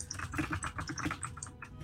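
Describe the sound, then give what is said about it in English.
Rapid, clacky typing on a computer keyboard, a dense run of sharp key clicks in an uneven rhythm, fairly loud, with no talking. “Sorry to the audience, I have a clacky keyboard.”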